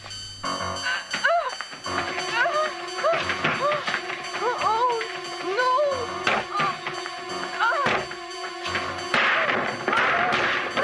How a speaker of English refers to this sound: Breaking a lot of furniture. Yeah, that's the door that'll have to get replaced. And Jamie Lee is about to smash the glass. Or the patio door will have to be replaced.